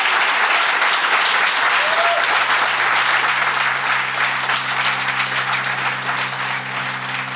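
An audience gives a round of applause for Matt Rogers, clapping loudly and steadily for several seconds, a dense wash that holds its level before easing slightly toward the end, with a low steady hum underneath.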